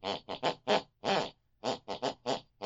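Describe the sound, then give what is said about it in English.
A woman snores out a melody in her sleep from the room next door, in a rhythmic run of about nine snorting, pitched bursts with brief gaps between them, mimicking snoring as a tune, loud with no talking. “Picks and pulls in her unconscious mind, and this is the tune that she snores.”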